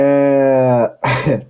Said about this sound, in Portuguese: Já vou pedindo desculpa aí, pessoal. Tô pigarreando um pouco ainda.